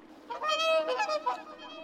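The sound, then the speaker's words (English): A young swan on the water, stretching out its neck, lets out a strange, harsh honking cry, a few strained nasal calls running together over nearly two seconds, fairly loud with nothing else around it. “He whirled himself in the water like a wheel, stretched out on his neck towards them, and uttered a cry so strange that it frightened himself.”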